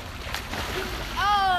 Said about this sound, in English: It was a belly flop. It's kind of weak, though. Not very top-notch belly flop, but we'll let it go.